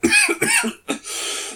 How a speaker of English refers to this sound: oh, sorry, I've got the coughs going on.